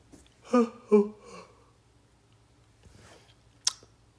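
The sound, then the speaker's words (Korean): A pet named Bam, resting in its pet house, breathes in three quick, slightly voiced puffs in a row, then goes quiet apart from one faint breath and a brief soft click. No one speaks. “지금 숨소리가 들려요. 숨 쉬는 소리가.”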